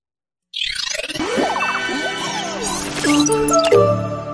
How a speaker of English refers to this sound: That's the chime. That new, new, new, new. Yeah. But that's specifically the one from the 25 years. 25-year... That was their anniversary.